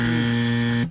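quiz buzzer

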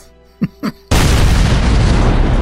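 dynamite explosion

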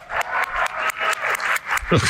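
audience applause

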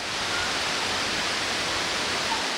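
water rushing

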